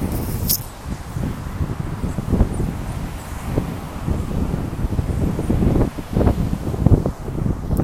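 Ocean waves wash in a steady, low rumbling roar, with heavy wind buffeting the microphone and brief surges of louder water throughout. No voices are heard.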